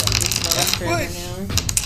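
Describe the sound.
Scratchy, rasping strokes of a pen scratching out ink writing on paper, fairly loud, with a brief murmur of voices in the middle.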